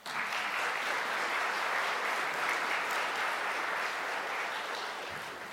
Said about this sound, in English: By the clapping of your hands, you said you'll support these folks, so we appreciate you doing that.